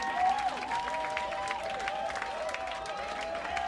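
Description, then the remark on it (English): A concert crowd of about 400 people in a packed house at the Rock and Roll Hotel in Washington, D.C. applauds steadily after a band's set, a dense wash of clapping with scattered whoops and whistles rising above it, heard from within the audience. “If people aren't clapping a lot, it's because there's just no room to move your arms.”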